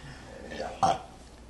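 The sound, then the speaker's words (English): A person imitates bullywug creatures belching with their voice: one short, loud, croaky burst, preceded by a softer guttural rumble against a quiet background. “Bullywugs, you hear them belch.”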